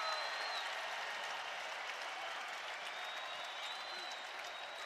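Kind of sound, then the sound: crowd, basketball arena crowd cheering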